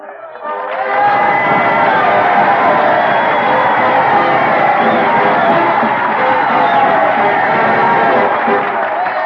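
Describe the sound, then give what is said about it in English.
A large crowd on Cemetery Hill in Gettysburg, on a chill gray November day in 1863, cheers and applauds after Edward Everett's two-hour oration, a dense, steady roar that swells in after a brief start and holds loudly for several seconds, with a wash of overlapping voices. “It lasted 2 hours, but the crowd there loved it.”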